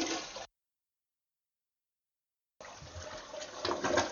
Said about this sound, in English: And no one's the wiser that you were just flushing.